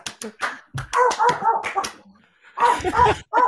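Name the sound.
dog barking and whimpering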